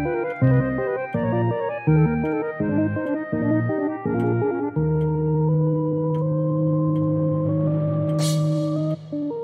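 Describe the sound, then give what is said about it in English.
A cuckoo clock call marking the start of the Clockwork Cabaret show: a series of bright, hooting two-tone notes in a steady rhythm, then a long sustained chord that rings on to the end, with no voices. “Sound of the cuckoo, you know that it is time for the Clockwork Cabaret.”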